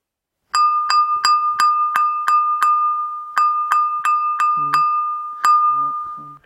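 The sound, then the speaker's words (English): The carol melody Good King Wenceslas plays on bright, ringing chimes, about a dozen struck notes in a steady rhythm with one short pause, each note ringing on into the next. Faint voices murmur briefly near the end. “Good King Wenceslas looked down on the feast of Stephen.”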